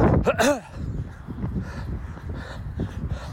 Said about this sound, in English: Just getting chased by a dog there, so let's go.